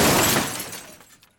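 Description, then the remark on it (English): A loud crash of impact and shattering glass bursts out at once as a Malibu car jumps the curb, crosses a lawn and crashes into the side of a house, then rattles and fades away over about a second, with no voices. “The Malibu jumped the curb, massacred a lawn, and crashed into the side of the house nearest to the end of the street.”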